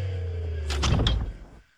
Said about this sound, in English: The doctor pressed a button on the side of his chair, and thick metal doors slid down over the exits. The cadets watched, horrified, as every escape route was blocked.